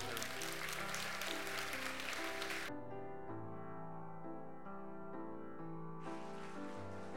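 A church audience applauds the mothers on Mother's Day morning, clapping steadily over sustained organ-like music for about three seconds. The clapping drops away, leaving the chords alone, then swells back in near the end.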